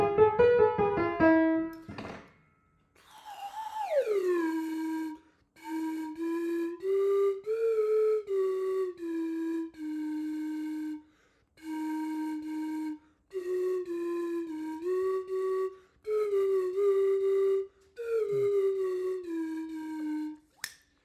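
A slide whistle plays a halting melody alone, with loud sustained notes joined by swooping glides. It starts with quick downward slides, then continues in short phrases separated by brief pauses.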